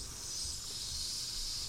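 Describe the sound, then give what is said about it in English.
Food sizzles on a grill: a steady, bright hiss with faint crackle underneath, holding at an even moderate level for under two seconds with no voices. “See, the thing is, you know, you can time constraint the name game, you can time constraint the podcast, but the grill's still going to be on. You hear that?”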